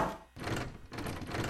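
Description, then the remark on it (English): A library door with a sticking handle rattles and thumps in its frame as someone tries to force it open, with a brief pause followed by a run of rough jostling noises. “What's wrong with this door? Is it locked?”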